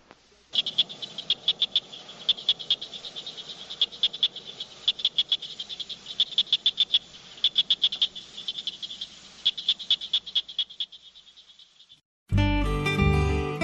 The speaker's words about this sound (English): Southern cricket frog.